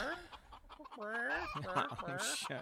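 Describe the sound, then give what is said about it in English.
A chicken sound effect, played by clicking, clucks and squawks in a quick, rising series of calls, loud, with no talking over it. “Oh, I was going to play a chicken, but touch portal's not working.”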